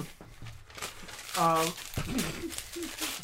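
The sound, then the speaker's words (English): A paper contract is torn up: crisp paper ripping and crinkling in several rough bursts, with a brief voiced exclamation and background chatter mixed in. “Don't you dare rip that! It's a piece of art.”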